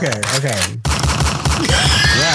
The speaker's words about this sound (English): Oh, gunshots.